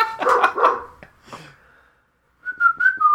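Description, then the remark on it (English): A dog barks sharply, two quick loud barks followed by a couple of softer ones, then a pause before a high, wavering whistling tone. “Oh, God, my dog is destroying me!”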